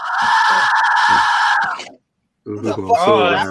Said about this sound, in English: Mayan death whistle. Oh, that's so cool. I'm scared and turned on.